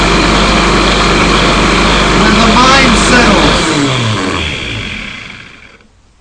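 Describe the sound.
A blender roars steadily as it churns water, its motor whine holding loud for a few seconds before spinning down and fading into near silence, with a voice speaking over it.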